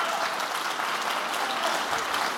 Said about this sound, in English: Won't we jump to our feet and clap our hands and say, "We need the Holy Ghost and fire to begin to burn in us again"?